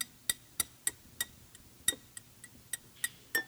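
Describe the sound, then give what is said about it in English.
A series of about ten small, bright clinks of metal finger rings tapping against a glass, irregularly spaced and fairly quiet, each with a brief high-pitched ring. “And so every time these things clink on a glass, right?”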